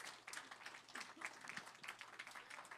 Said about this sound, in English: If you guys will give a hand clap to them today.